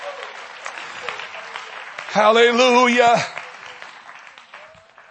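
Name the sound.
audience clapping hands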